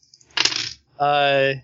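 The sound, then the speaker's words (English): A quick rattle of dice rolled for a sneaking check, tumbling across a hard tabletop for under half a second, followed after a short pause by a brief sustained voiced tone. “Didn't know what dice I was rolling.”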